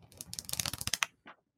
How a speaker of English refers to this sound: You guys like the ASMR of turning pages, don't you? Love it. Who wouldn't? Page turn.